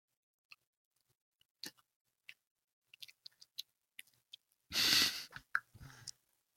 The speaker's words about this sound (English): I'll show you with this next jelly bean after I chew this jelly bean.